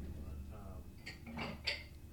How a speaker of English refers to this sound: I'm gonna just pour it over here because there's probably a shot left. Yeah, just pour it in a glass. We can share one glass if you want.